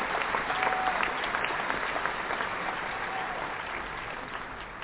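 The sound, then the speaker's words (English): A crowd applauds steadily to welcome an author as a guest, a dense wash of many hands clapping at once that holds an even level for several seconds, with no voices rising above it. “I want you guys to join me in a big round of applause as we welcome author Jabria Iyalla to the show”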